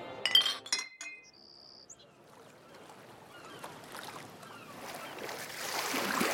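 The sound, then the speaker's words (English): A bright burst of glasses clinking together in a toast at the start, a few sharp chimes with a ringing tone, followed by a low wash of murmuring and rising ambient noise. “A toast to Turner. To Turner!”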